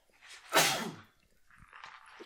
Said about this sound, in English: Big sneeze. He sneezed all over the Reese's Puff.